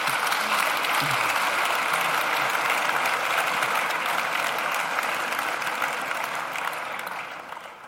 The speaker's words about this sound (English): I think they deserve a round of applause just to get us going.